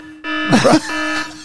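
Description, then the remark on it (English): A loud, steady electronic buzzer sound effect, a new show drop called the Boring Alarm, drones on for over a second after a brief silence, with a short burst of voices breaking in over it partway through. “We have a new drop today. What? Yeah, it's called the Boring Alarm.”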